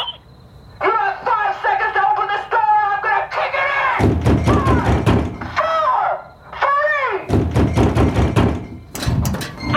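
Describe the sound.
A door of an empty building with no front entrance thuds heavily as it opens, with a burst of repeated low knocks and thumps, loud, over a continuous tonal, voice-like background.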